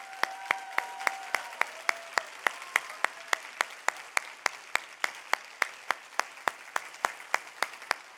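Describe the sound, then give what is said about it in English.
An audience at an Ayn Rand Institute event applauds the institute's employees as they stand. Steady, rhythmic clapping of roughly three or four sharp claps a second over a continuous wash of crowd noise, with a few brief tonal cheers early on. “And I want all of the Ayn Rand Institute employees to stand for a minute, just for a second, all of the employees, and give you a big round of applause, everyone.”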